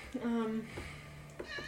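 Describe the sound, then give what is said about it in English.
A person imitates a cat's meow, a short drawn-out vocal mew, followed by a brief second voiced sound. “Just transform you into a cat.”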